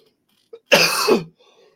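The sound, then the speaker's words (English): A brief catch in the throat, then one harsh, rasping cough or throat clearing that lasts about half a second, fairly loud, with no talking around it, from someone getting over a sickness. “Oh, having this cough.”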